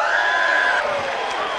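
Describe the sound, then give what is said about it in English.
A stadium crowd roars in the stands in a loud, dense wash of cheering that holds steady throughout, with a sustained whistle-like tone cutting through during the first half, as lights shine down on the wrestling ring in the center of the stadium. “The crowd is erupting in the stands as the lights shine down upon the wrestling ring in the center of the stadium.”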